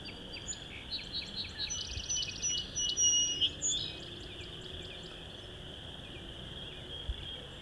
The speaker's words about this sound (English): It's an interesting song sparrow. It's about a half hour before sunset, but it's overcast. This song sparrow is right in front of me, but singing quietish.